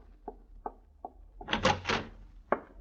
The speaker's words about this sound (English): Open the door.